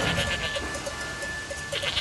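Goats bleating in a steady run of short, nasal calls as they cross a railway line at a level crossing. A thin ringing tone of goat bells hangs underneath throughout, with no voices.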